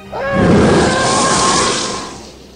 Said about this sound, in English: I think the TIE fighter sound is just the Wilhelm scream, like modulated.